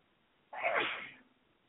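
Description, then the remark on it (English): A single sharp sneeze bursts out suddenly and fades within about half a second, fairly loud against an otherwise quiet background, with no talking. “Bless you, baby.”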